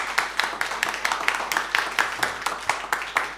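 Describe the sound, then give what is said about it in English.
A crowd of people in a sermon audience clapping together for God in a steady, brisk rhythm, sharp bright claps repeating about three times a second, fairly loud, with no voices over it. “Let's give God a mighty clap.”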